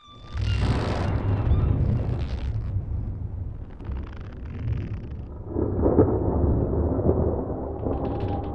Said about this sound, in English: Hours later, black clouds broil overhead and the first notes of thunder sound upon the horizon.